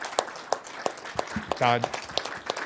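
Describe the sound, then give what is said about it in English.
Scattered handclaps in a loose, fairly steady rhythm, about three per second, for new firefighters just sworn in in Illinois, with a brief voiced shout or cheer rising in the middle and other voices murmuring underneath. “Would everybody please join me in a round of applause for our new firefighters?”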